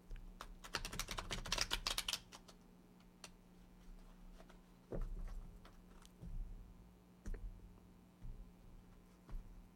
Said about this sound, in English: I'm going to reshuffle. Because I just feel like maybe I just did a not so great shuffle for you. If that card comes out again, we know it was meant to be there. Let me do it this way.